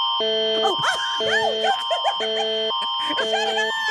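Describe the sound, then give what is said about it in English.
A laser device for zapping dog waste in a backyard: bursts of loud electronic beeping tones repeat about every second, with warbling, sweeping chirps between them over a steady high-pitched whine that runs throughout. “And the really fun thing is we're all familiar with the wonderful sound the laser makes.”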